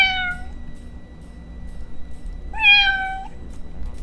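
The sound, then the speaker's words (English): Two drawn-out cat meows, one at the start and a longer one a couple of seconds later, fairly clear over a low background hum. “Everyone, bring your cats close to the speaker right now.”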